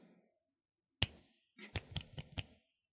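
A single crisp finger snap, a short pause, then a quick run of about four more sharp snaps, loud and bright with no voices.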